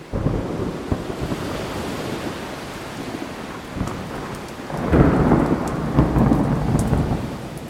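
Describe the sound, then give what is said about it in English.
A towering thunderstorm in the middle of the ocean, heard from a sailing boat: steady heavy rain hisses over a deep, rolling rumble of thunder that swells louder midway and lingers, with a broad wash like open water beneath it. No voices. “this time I will take you right to the ring of a towering thunderstorm in the middle of the ocean.”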